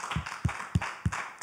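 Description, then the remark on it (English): A church audience at the Kelowna location claps together in a steady rhythm to celebrate their pastors of 30 years, sharp beats falling roughly every third of a second over a continuous wash of scattered applause, moderately loud. “Why don't you applaud them right now?”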